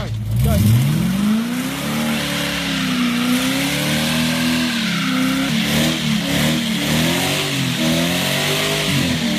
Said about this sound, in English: So he's burning rubber in. Oh no, the child is in the car driver's seat.